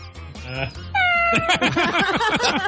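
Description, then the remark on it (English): A cat meows repeatedly as a sound effect, starting with a long drawn-out cry and then a run of shorter, rising and falling meows, loud with no other sounds around it. “That cat sounds too pleasant.”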